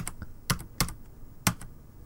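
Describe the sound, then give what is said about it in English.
A handful of sharp, clicky computer keyboard keystrokes tapped close to the microphone in an irregular rhythm, each click loud and crisp with quieter taps between them and no voices. “It's probably obnoxiously loud keystrokes because the keyboard is closer to the mic than my mouth is, which is unusual.”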